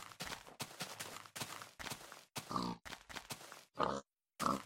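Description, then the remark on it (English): A rapid series of grunts and snorts from pigs in a video game, fairly loud, about ten short bursts in quick succession with a brief pause near the end before one more grunt. “These pigs are dry. All these pigs are dry.”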